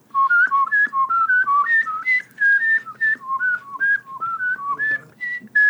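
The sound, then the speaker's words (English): A person whistles a horror movie theme melody, a quick, repeating run of bright notes rising and falling in a cyclical pattern, clear with no talking. “I whistle that in elevators just to see if somebody kicks in the bass line, you know?”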